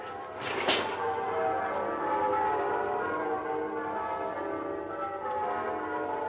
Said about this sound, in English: Bells. Merry, merry bells.